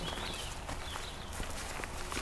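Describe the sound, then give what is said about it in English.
Steady crunching footsteps on dry woodland ground while walking through a hornbeam coppice, each step a sharp, brittle crackle of leaves and twigs, keeping a walking rhythm with no voices over a constant background hiss. “It's going to sound crunchy.”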